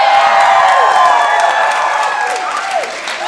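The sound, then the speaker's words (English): An audience in a bar bursts into sustained applause mixed with cheers and whoops, a dense, loud wash of clapping with rising and falling shouted voices throughout. “Besides rapturous applause from you people.”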